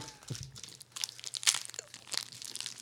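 Crinkling of the paper wrapper of a single malt scotch caramel, a burst of irregular crackles and rustles that rise and fall over a few seconds, with no voices.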